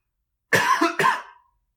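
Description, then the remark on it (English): Two quick, harsh coughs in close succession, loud, with a short raspy tail fading out and silence around them. “By the way, I am not editing that cough out.”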